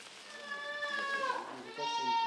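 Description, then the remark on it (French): A goat bleats in a long, wavering cry, followed by a second bleat that rises and carries to the end. “Souvent, une chèvre qui a faim ou soif n'arrêtera pas de beuler.”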